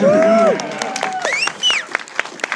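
A small audience cheers and claps for a cast member, opening with a loud, sustained whoop followed by scattered, uneven handclaps and a few rising shouts that trail off into sparse applause.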